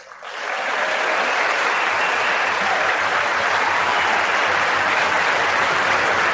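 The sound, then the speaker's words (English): A large audience breaks into sustained applause after a speech line praising America, with Nancy Pelosi among those applauding; a dense, steady wash of clapping that swells within the first second and stays loud and even throughout, with no voices standing out. “If you watch closely, Nancy Pelosi hates applauding these platitudes, now which you sort of have to.”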